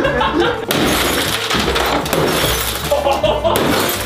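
A sudden loud crack at the start gives way to several seconds of harsh splintering and crunching, like a chair leg being broken off up close, with muffled voices faintly underneath.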